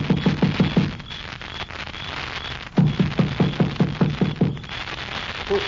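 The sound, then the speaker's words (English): Two runs of quick, hollow knocks on a door, a short burst and then a longer series after a pause, thudding in a steady rhythm over a constant background hiss. “You gonna knock? Of course.”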